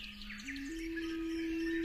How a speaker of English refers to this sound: The sound of birds. I wish I could sing like they do.